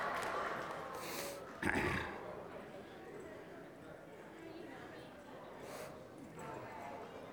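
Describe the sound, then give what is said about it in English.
A few scattered hoof clops from a horse walking on a hard floor on a stage, irregular rather than a steady gait, set against a constant murmur of voices and background noise. “The horse ain't bad either, is it?”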